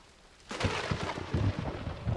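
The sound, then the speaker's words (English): A thunderstorm bursts in abruptly: a dense hiss of rain with deep, rolling thunder rumbles surging underneath, loud, with no voices. “When the tempest was over, both the grain and the flowers, greatly refreshed by the rain, again stood erect in the pure, quiet air.”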